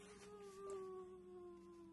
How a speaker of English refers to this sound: And so he leads us into the shadowy forest, and a wolf is howling in the distance.